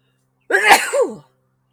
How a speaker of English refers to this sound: I may sneeze. Competition makes me sneeze.